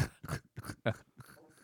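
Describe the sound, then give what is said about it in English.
A run of about five quick, wet sniffles and snorts in a fast, uneven rhythm, noisy and fairly loud, with no talking. “It could just constantly. Be you sniffling.”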